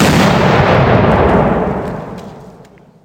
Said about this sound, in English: But in May of 1861, the only official casualty in the war had been the accidental death of a Union soldier standing too close to a cannon that fired prematurely during a 100-gun salute.